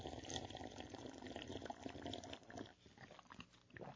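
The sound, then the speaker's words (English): A loud slurping sip of coffee mixed with mayonnaise, held right at the mic, gurgling and bubbling continuously for a few seconds before trailing off into softer wet slurps. “So just hold that up to the mic and let's get a good sip on this”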